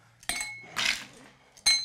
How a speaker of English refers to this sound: So we're gonna stir down the glass. This is craftsmanship at its finest, ladies and gentlemen.